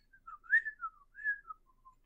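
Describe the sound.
Someone whistles a short, wandering melody of several gliding notes, clear but fairly soft, while setting up tea by a fire, checking the heat and dropping tea leaves in to steep. No talking or other sounds around it.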